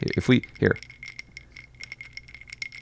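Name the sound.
ice cubes clinking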